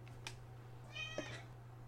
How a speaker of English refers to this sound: Did you hear him meow? Yeah. That was Toulouse. I heard... In the background.